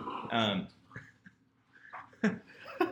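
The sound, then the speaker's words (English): A dog barks in a room: one loud, drawn-out bark near the start, then a pause and two shorter, sharper yelps toward the end. “Sorry, my dog.”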